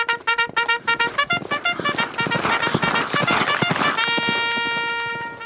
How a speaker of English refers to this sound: The thundering of hooves split the silence as our horses galloped through the bleak landscape. The wind wisped into the manes of my horse like flames.